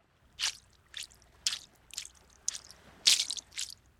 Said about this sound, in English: Jesus expertly threw his rock, and it skimmed across the water, bouncing 7 times.